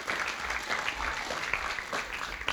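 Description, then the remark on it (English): A round of applause from a church crowd for the volunteers of the Performing Arts Camp (PAC camp), dense steady clapping with many overlapping claps sustained evenly throughout, fairly loud and with no voices over it. “So yeah, give them a round of applause.”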